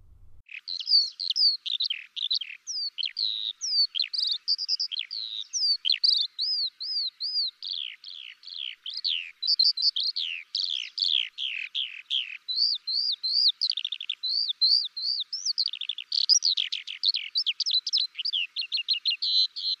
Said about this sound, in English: The skylark is only one of two species of resident larks in the UK